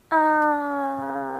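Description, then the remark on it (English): A voice imitates a little cat with a single long, steady, whiny mew that starts suddenly and holds its pitch for over a second, slowly easing off in loudness. “I just imagine a little cat going.”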